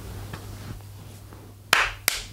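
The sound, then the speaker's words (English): Two sharp hand claps close together near the end, crisp and fairly loud, following a stretch of quiet low hum and faint tapping noises. “Clap this.”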